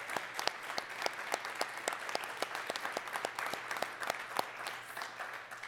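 Audience applause, a steady wash of many hands clapping with sharp individual claps popping out, sustained at an even, moderately loud level for several seconds with no talking.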